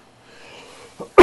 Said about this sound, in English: We need a cough button. We do.